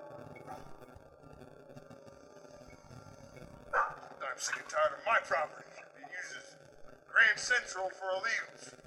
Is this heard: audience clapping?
no